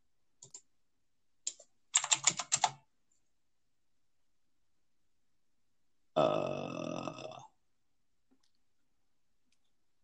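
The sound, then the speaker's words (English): A couple of isolated key clicks, then a quick flurry of typing on a computer keyboard while searching Google for a dice roller, followed after a pause by a loud, drawn-out belch. No talking. “I gotta fucking Google the dice roller.”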